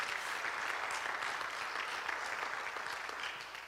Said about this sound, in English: Yeah, give him a hand clap of praise.